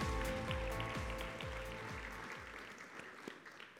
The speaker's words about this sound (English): Yeah, let's clap for that.